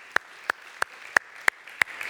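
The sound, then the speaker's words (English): An audience claps in unison: six crisp, sharp claps in a steady, even beat, each one a clean snap with quiet gaps between and no voices. “Give the Lord a clap on that too.”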